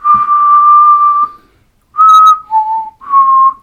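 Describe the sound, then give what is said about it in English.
Someone whistles a short tune, the theme of the sci-fi TV series Doctor Who: one long sustained note, a brief pause, then three shorter notes that dip and rise again, clear and fairly loud with no talking. “I'm not going to do the whistle.”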